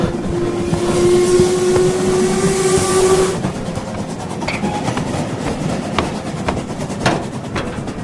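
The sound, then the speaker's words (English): A train rumbles steadily along the rails, a sustained whistle sounding over the first few seconds, then rhythmic clicking and clattering of wheels over track joints continues. “That train is taking me out of here to who knows where.”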